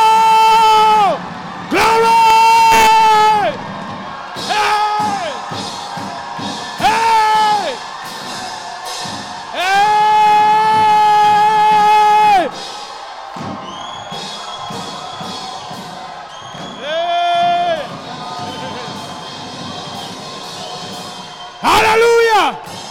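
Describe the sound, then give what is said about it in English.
A crowd shouts and cheers loudly in repeated surging bursts, with sustained whoops and yells rising over a constant roar of many voices, energetic throughout. “I'm about to shout like I've never shouted before.”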